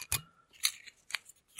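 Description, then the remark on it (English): A few sharp plastic clicks and scrapes, crisp, as a bottle cap is twisted off in short bursts with brief quiet gaps between them. “Unscrewing the cap.”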